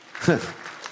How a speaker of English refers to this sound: Not everybody's clapping.